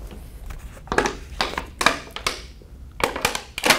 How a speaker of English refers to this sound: A big ol' sip of water. Cheers. Thank you, water.